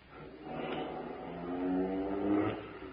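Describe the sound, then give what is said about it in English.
A getaway car's engine revs and accelerates hard after leaving a bank, its pitch climbing steadily as it speeds away from the curb, loud for a few seconds with no voices. “We backed out of the bank and ran for the car parked at the curb. Skip Turner covered our getaway.”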